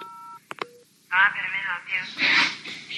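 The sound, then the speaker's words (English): A short telephone keypad tone sounds at the start, followed by a couple of quick clicks and a brief beep, then a lively high-pitched voice talks loudly over it. “No, no serious talk today, because today is phone day. Watch this.”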